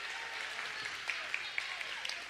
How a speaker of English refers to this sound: Guys, give a round of applause for our three helpers. You guys have a seat. Great job. Good work.